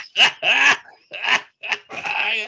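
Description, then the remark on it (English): A person imitates an animal growl, making five short, raspy vocal bursts in a quick uneven series, fairly loud, with no other sounds around them. “He steps towards you, growing a little. And growling a little.”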